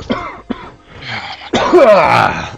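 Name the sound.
cough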